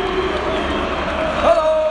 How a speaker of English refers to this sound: Is the crowd going berserk because Real Madrid have got the ball. Pretty intimidating for an away side.